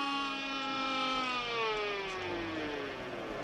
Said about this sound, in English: So I would just say, if there is a sound that brings joy to all humans and terror to all spooks, specters, and ghosts, it's the siren from the Ecto-1, the official transportation of the Ghostbusters.